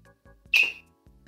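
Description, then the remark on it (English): A single sharp, high-pitched whistle bursts out loudly for about a quarter second, then fades, with faint low murmuring sounds before and after. “You heard a whistle?”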